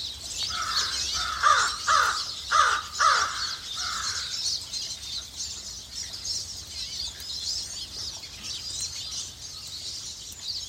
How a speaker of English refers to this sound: Oh, that's not raven, that's crow. Are you sure? I don't know.